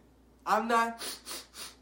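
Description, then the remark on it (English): Deep breathing: a voiced, gasping intake of breath followed by three short, airy breath puffs in a quick rhythm, moderately loud with no talking. “You know, right now, you can hear, I'm breathing deeply.”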